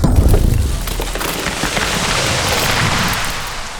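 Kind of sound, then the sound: sound effect, explosion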